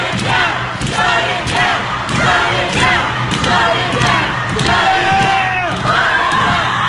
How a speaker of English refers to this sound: Did you hear that primal scream? Listen.